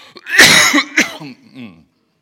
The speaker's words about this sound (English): Excuse me, I'm going to cough.